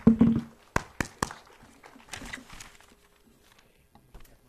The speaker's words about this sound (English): Join with me in a round of applause for our pastor, God's man.